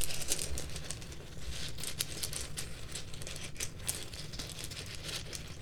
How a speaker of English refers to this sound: Just feeling in the bag. I'm sure you can hear the rustling of the runes.